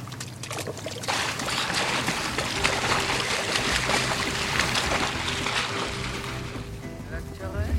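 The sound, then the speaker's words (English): A lifeboat moves across the water, its steady engine rumble blending with loud, continuous rushing and splashing water, with indistinct voices faintly mixed in. “The lifeboat. Look at you all driving a rescue boat.”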